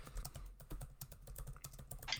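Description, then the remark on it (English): Rapid, uneven clatter of keys on a computer keyboard as someone types and sends a tweet, a steady stream of soft clicks with no voices, ending on a brighter, slightly louder tap. “I'm actually tweeting this out right now, so you can just go back.”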